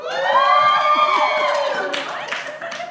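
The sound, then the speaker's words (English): A live audience cheers and shouts, led by a loud, sustained high-pitched whoop that holds and slowly falls in pitch, with scattered claps and shouts breaking in toward the end. “Let's make some noise for flashing at the Super Bowl.”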